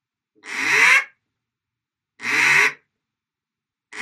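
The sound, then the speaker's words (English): A duck call blown in drawn-out quacks while practicing basic calling mechanics: two long, raspy, reedy blasts about half a second each with a pause between, and a third starting at the end. Loud, with no talking. “Now that's too long for a normal quack.”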